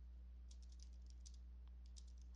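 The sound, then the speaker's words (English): Quiet computer keyboard typing, with short bursts of soft clicking keystrokes separated by brief pauses, over a steady low electrical hum. “Hold on, still typing.”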